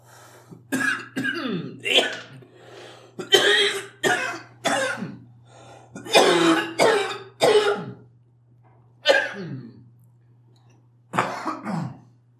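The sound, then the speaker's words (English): A fit of harsh, repeated coughing after taking a big vape hit, coming in rapid bursts with a few short pauses and ending in a couple of strained, throaty coughs after a brief lull. “that was just me coughing from taking a big vape hit after Blake”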